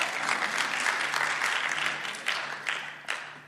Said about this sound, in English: That's like a half a clap that I just had. That wasn't even one clap.